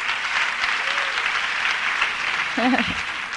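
An audience applauds the speaker's husband of 25 years for the full stretch, a dense, steady wash of clapping with no breaks, and a brief voiced cheer rises out of it near the end.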